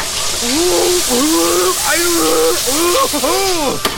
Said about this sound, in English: A hyper shower.